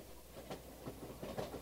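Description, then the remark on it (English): A faint choo-choo train effect at the beginning of a song about a train, played from a flexi disc: a steady run of soft, rhythmic chugging bursts, like a steam locomotive rolling along, heard alone at a low level with a slightly hissy background. “You can tell it's about a train because they have a little choo-choo sound here at the beginning.”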